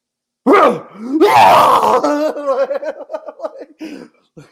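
A voice imitates Jeff screaming and hitting a door in a WWE scene: a loud, strained scream-like yell, imitating someone shrieking, which breaks into a rapid run of fading, choppy laughter-like bursts. No door knocks can be made out.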